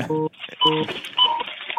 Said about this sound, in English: Cash register.